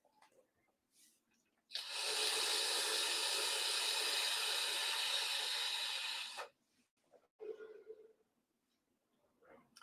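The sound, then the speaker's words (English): A vape device set to 50 watts hisses steadily through one long puff of about five seconds, a loud, even, airy rush, followed by a few faint, brief rustling sounds. “Now, let's try 50 watts.”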